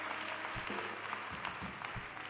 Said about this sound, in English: Come on, let's give the Lord a hand clap. Praise Him. Praise Him.